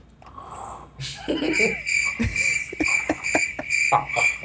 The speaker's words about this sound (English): Damn, it's real early to get the crickets.